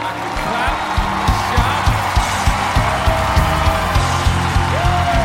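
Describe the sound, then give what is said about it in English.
A church audience claps in a steady rhythm while voices shout and cheer together, a dense, lively crowd sound that continues without a break. “I'm so happy about it. I can clap and shout.”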